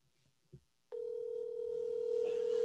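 A brief soft click comes first, then a steady, loud telephone dial tone as a call is placed to a friend, starting abruptly and humming continuously to the end, growing slightly louder.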